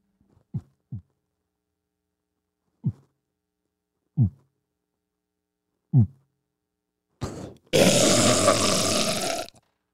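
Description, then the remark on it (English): A slow human heartbeat of about 48 beats a minute, low, muffled thumps arriving roughly every second and a half, then giving way to a loud burst of harsh, static-like noise near the end. “A slow heartbeat is a sign of a healthy guy.”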